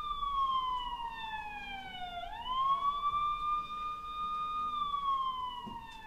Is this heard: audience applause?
no